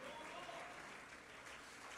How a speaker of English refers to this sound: Jump to your feet, clap your hands, and I want you to say to yourself, I'm going on. I'm moving on.